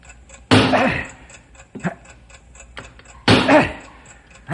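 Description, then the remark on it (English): A bomb's timing device ticks steadily and quickly throughout, fairly soft, interrupted twice by loud, rough bursts of noise that briefly swamp it. “I can still hear the ticking,”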